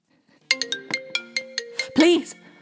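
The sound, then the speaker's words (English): A mobile phone ringtone plays a quick run of bright, electronic melody notes, then a brief voice-like sound breaks in near the end. “Please stop calling me. Try turning off your phone if you're finding it disruptive.”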